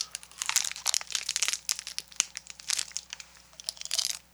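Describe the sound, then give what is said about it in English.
Crisp crinkling of the plastic wrapper of an Eatmore original dark toffee peanut chew bar, with crunchy biting through the wrapper and chewing mixed in, a steady run of sharp rustles and crunches lasting a few seconds with no talking. “Oh, too aggressive a bite. I got some of the plastic in my mouth. You probably heard that.”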